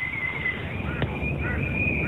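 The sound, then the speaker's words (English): Two birds near Bellbird Park call back and forth at about 5 o'clock, with high, thin whistling notes, one sustained tone wavering over brief chirping answers, heard against a steady background rumble. “I know that at about 5 o'clock it starts its song and it yells out to another bird and that bird yells back.”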